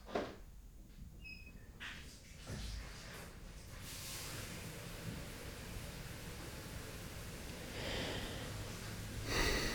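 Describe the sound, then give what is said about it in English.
A running shower hisses steadily, a dense, even rush of spraying water that swells slightly toward the end, preceded by a few brief bumps and breathy sounds at the start. “That is the sound of a shower.”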